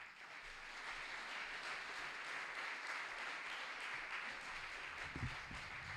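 Sustained applause from a large audience welcoming a speaker to the stage, a dense, steady wash of clapping at even loudness throughout, with a few louder claps near the end.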